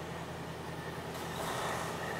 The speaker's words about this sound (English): I got a truck coming. I hope it's not going to be too loud.